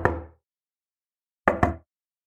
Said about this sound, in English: We got scared and headed back inside, but for the rest of the night, we would hear random knocks on the window.